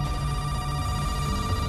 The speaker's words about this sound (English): But a short time later, the phone rings.